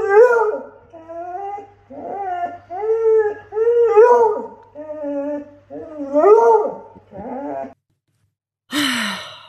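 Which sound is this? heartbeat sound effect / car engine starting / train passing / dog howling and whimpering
dog howling and whimpering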